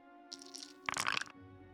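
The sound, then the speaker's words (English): A soft rattle of dice shaken briefly and rerolled with a hero point during combat in a tabletop role-playing game, then a louder burst of rapid clattering as they tumble and settle, all over a steady low electrical hum with no voices. “So go ahead and reroll it.”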